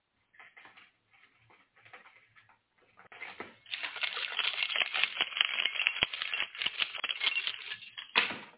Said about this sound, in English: the one who's jingling the keys. Where the hell are my keys? Here they are.